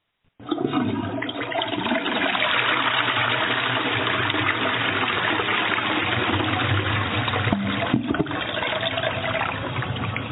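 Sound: shower water running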